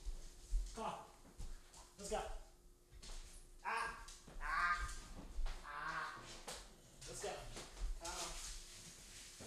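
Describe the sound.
A restless female dog moves about a room, making repeated whining, yelping noises in short bursts, with a person's voice mixed in at times.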